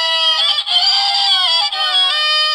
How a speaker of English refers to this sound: Why the breakup music? Not quite sure if that's bad violin or roosters dying.